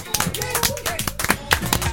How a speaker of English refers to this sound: Actually, that deserves a round of applause, actually, doesn't it? Yes, I think so.